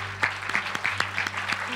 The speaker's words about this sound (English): give the Lord a hand clap of thanksgiving in the house of the Lord tonight.